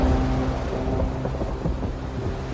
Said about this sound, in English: starting to rain, but only where Truman is sitting